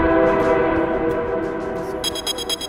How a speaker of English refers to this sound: The train pushed back into gear, running once more headlong towards the icy gates of the garden behind the wall. The locomotive was stuffed to the gills.